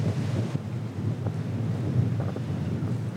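Strong wind with driving rain buffets the microphone by the Mississippi during a test of recording gear, a steady, loud low-frequency roar with gusty rumbling surges throughout and no voices.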